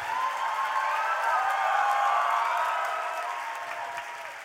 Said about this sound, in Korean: 박수가 생각보다 작네요.